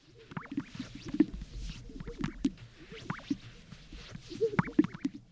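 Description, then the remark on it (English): A sage grouse, an American bird, calls with a string of low, bubbly pops and gurgling swishes, repeating irregularly over a soft hiss, with no voices present. “The moment I heard it, I immediately recalled this American bird that I've never seen before, and its fantastic sound. This is the sage grouse.”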